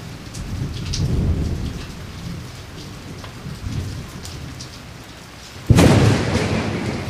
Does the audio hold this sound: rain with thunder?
yes